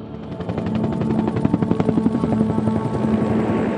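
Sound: helicopter flying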